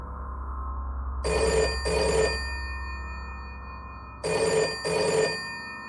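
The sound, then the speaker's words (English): A telephone bell rings in two double bursts, each pair of shrill, buzzy rings separated by a pause, over a low steady background hum. No one speaks. “The anomaly floated out the door, down the stairs, past another telephone, causing it to ring, and then it vanished.”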